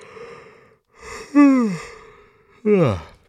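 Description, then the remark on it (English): A person lets out two exaggerated, drawn-out yawns, each a breathy intake sliding into a loud groan that falls in pitch, with a brief pause between them. “It is a collective yawn.”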